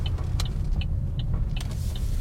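A car rolls along a rough, bumpy track after a left turn, a few miles on, in mountain country near a sheep station, its steady low rumble broken by jolts and rattles, with a few faint high chirps overhead. No one speaks.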